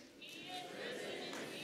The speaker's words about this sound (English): Yes, you can clap. That's all right.